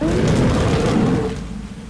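A deep, rolling rumble of thunder as yellow and blue flashes of lightning light up cloudy mists. It is loud and low, then slowly fades away with a hiss like falling rain beneath it.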